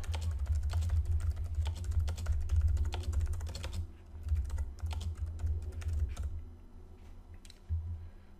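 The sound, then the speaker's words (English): Rapid computer keyboard typing of a Google search asking what is more likely to happen than a plane crash, a dense run of light plastic key clicks that thins out into a few scattered taps after about four seconds, over a low steady hum. No one speaks. “I'm sure if you Google search the stats, right? Let's do it right now.”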